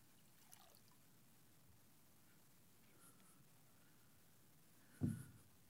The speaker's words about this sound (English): But he does take the pitcher of water and he pours it like this.